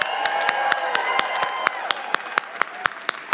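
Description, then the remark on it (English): At a Growth Day event, an audience claps for people standing up after a life-shifting insight. The clapping is a steady, rhythmic beat of about four sharp claps per second, with cheering and whooping voices sustained underneath throughout. “Oh, that's the clap you give for a life shifting insight?”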